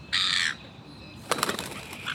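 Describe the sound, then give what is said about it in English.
A harsh seagull screech rings out, then after a short pause comes a quick string of raspy, squawking gull calls, clear, with no voices. “What a super nature sound. Can you make a seagull sound?”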